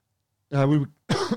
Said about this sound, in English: Timely cough. I mean, whether that's a clue.